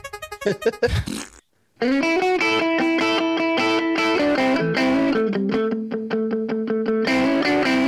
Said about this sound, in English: All right, so it doesn't sound like a guitar tone making farts like out of a guitar. It just sounds like farts, which is useless to me.